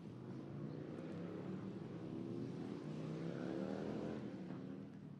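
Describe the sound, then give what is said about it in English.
A loud Harley motorcycle engine rumbles, its pitch climbing as it revs and passes, a steady throaty roar filling the whole stretch with no voices. “I thank God for Harleys.”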